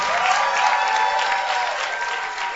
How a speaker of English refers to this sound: Clap once again for our pastor. God bless you.